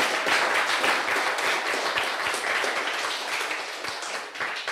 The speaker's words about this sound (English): So, and why don't we give the Lord the loudest clap offer that we can give Him.